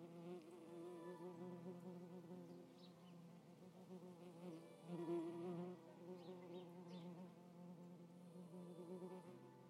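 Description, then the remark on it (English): A bee buzzes steadily around a microphone at an open window for about ten seconds, its droning hum wavering slightly in pitch and loudness as it hovers. No one speaks. “Well, a bee has become very interested in my microphone.”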